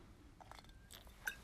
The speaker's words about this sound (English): As I take a first sip of my lemonade of the morning